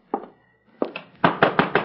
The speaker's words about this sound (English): Come in, come in. Nobody ever knocks on Minnie's door.